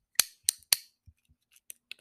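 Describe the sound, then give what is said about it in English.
A fidget cube taken from a desk drawer clicking: three sharp, bright snaps in quick succession, followed by a handful of softer, irregular clicks, with no voices. “So if I open my first desk drawer, we have a fidget cube.”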